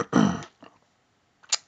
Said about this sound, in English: Clearing my throat.